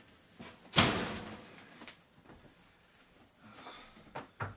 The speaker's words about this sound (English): Still not a good idea to catch the door on my shoulder.